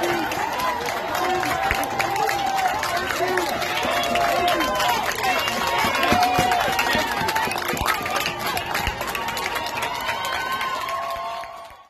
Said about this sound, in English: standing off to the side during a mass gathering of non-socially distanced people applauding. These are the heroic nurses, the ones who were recording TikTok videos. And now they're applauding as thousands of people violate social distancing.